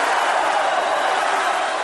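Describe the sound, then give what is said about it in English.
The crowd at America West Arena chanting during a WWF wrestling event, a loud, dense, unbroken roar of many voices blending together with no clear beat, holding steady for about two seconds without anyone speaking over it. “There goes that chant again. Listen to the crowd at America West Arena.”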